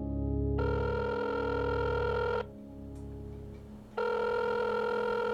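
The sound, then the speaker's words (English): An outgoing call's ringback tone: a steady electronic ring for about two seconds, a pause, then the ring starting again. Loud, with no voices. The phone call is placed at 4 a.m. “I called the only person I knew wouldn't be asleep.”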